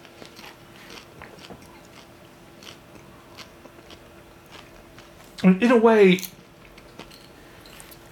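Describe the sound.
A dog bites down on a treat it has just been given, in one short, loud crunching burst lasting under a second, with brief quiet speech around it.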